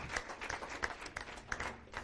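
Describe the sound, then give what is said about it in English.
A church audience gives the Lord a hand clap of praise, a dense, steady wash of many hands clapping at once with scattered sharper claps standing out, sustained evenly throughout with no voices on top. “Let's give the Lord a hand clap of praise, would you?”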